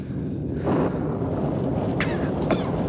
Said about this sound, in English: Listen. Listen. Rain. Rain. Cool water. Cool air.